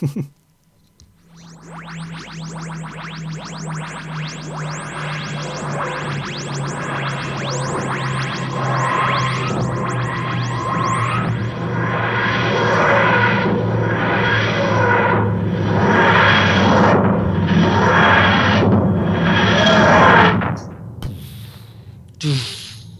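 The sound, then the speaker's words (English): A sci-fi spaceship landing effect: a steady low engine hum under whooshing, pulsing roars that build for about twenty seconds, then cut off, followed by a short, solid thud. “Satisfying thud. Yeah. As we land.”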